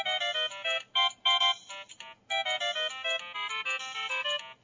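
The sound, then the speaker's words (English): A bright, electronic chiptune melody, a Mario Brothers ringtone, plays from a phone speaker, with bouncy staccato notes in a quick rhythm and short gaps. It is fairly loud, with no voices over it. “We're playing our Mario Brothers ringtones.”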